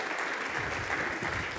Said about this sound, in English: So, thank you guys. Give these contestants a round of applause.